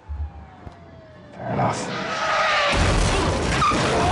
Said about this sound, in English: It really is a heck of a car crash stunt. Multiple angles, you really feel the car hitting Sawyer and Miles' car.